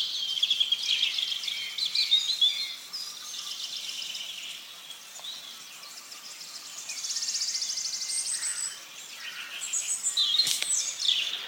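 A wood warbler's song, a rapid high shivering trill that speeds up like a spinning coin settling, from about 30 or 40 yards away in a stand of pines and very tall ashes among old Douglas firs, rising out of a busy chorus of other birdsong. No one speaks.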